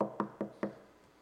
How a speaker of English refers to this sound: knock on the door again. I don't want to knock on the door. I done did it twice.